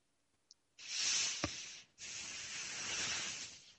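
Two long, loud breaths blown into a microphone, each a rough, windy hiss lasting over a second, separated by a brief gap, with a faint click and a soft thump in between.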